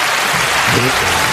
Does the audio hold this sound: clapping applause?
yes